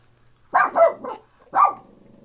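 A dog barks four times: three quick, mid-pitched barks in a row, a brief pause, then one more bark, each sharp and fairly loud, with a low hum underneath.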